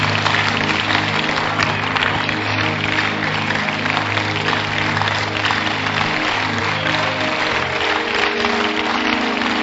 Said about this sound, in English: Clap for Jesus.